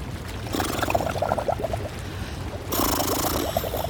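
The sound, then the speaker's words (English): Bubbling and gurgling as a person blows air into jacuzzi water on a boat at 8 a.m. in 46-degree weather, a steady burbling stream that grows into a louder, frothy wash of bubbles toward the end. No talking. “Because you're blowing bubbles in a jacuzzi that is probably 60% sperm, and we just cleaned it.”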